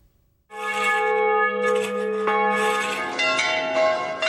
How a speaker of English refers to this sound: Church bells are ringing the world over this morning, especially in the Italian town of Enyone.